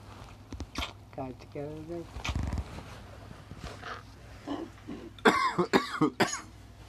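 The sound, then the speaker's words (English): Someone clears their throat and coughs several times, with murmured vocal noises in between, ending in a loud cluster of harsh, rapid coughs. “That's a cough.”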